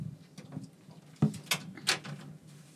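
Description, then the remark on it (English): A door opens and shuts, giving a few sharp clicks and thuds spaced over a couple of seconds against a low, steady hum, with no one talking. “you need to be able to hear the door open and close and hear you set stuff down and sit down”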